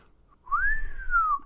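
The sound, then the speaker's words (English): A single whistled note rises and slowly bends back down, lasting about a second, a thin wavering tone from someone attempting to whistle, with no talking. “Cue me up, and I'll hit you with it.”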